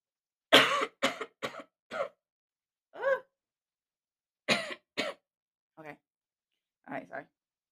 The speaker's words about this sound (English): Hold on, you guys. I really am coughing.